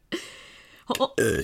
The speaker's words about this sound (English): starts showing him cool burps she's learned how to do instead.